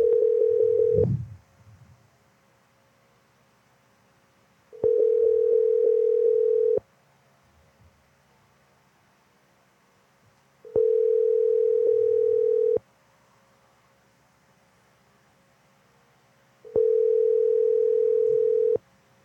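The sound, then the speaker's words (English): A telephone ringback tone while calling: four steady, buzzing two-second rings separated by roughly four seconds of near silence, loud, with no one speaking. “Your call has been forwarded to an automated voice messaging.”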